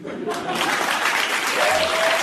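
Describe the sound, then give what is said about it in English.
A studio audience breaks into loud, steady applause, a dense wash of clapping filling the whole moment, with a few voices cheering faintly underneath. “Trained SEALs in his audience who would be happy to applaud the opposite position if he supported the cancel culture.”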